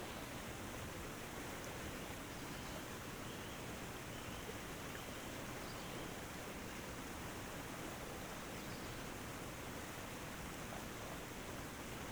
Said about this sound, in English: Swim over to stand underneath the waterfall. The torrents of water pound your back.